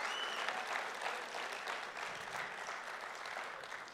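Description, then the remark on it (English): A crowd claps steadily in a dense, continuous patter of many hands, sustained at an even level for several seconds with no voices standing out. “Can we give our guys a big round of applause?”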